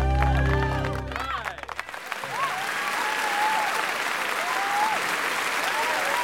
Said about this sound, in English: A roar of applause from the audience demonstrates an exciting end to this classic remake of the John Ford epic and another evening at the Playhouse.